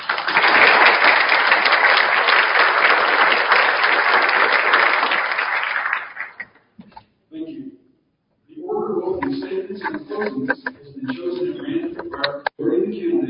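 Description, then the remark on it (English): An audience applauds to welcome the candidates at an event hosted by KKOB, with steady, dense clapping for about six seconds, which then fades out; after a short pause, people begin talking. “Before we begin, I'll ask the audience to applaud and welcome the candidates.”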